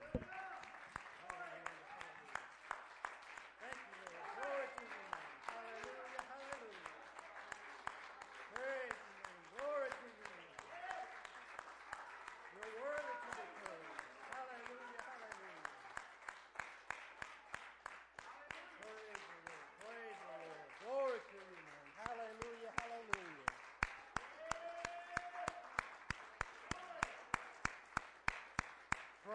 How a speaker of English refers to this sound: I just want to, before I begin anything, just set the mic down and just give the Lord another good shout out and hand clap of praise before I begin.